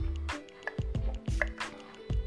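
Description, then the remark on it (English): Someone drinks water, taking several wet gulps and swallows in a steady rhythm over a couple of seconds, with no talking. “Oh man, this is good water. This is some good water.”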